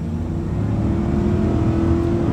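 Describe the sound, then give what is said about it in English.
A Volvo XC90 Recharge plug-in hybrid SUV with a 400-horsepower T8 twin engine revs and accelerates with a loud, steady, throaty roar that holds strong for a couple of seconds, with no voices. “The thrill of a 400-horsepower T8 twin engine.”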